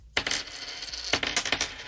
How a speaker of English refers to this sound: 5 coins in my hand.